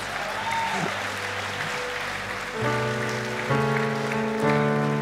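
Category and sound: crowd, audience applause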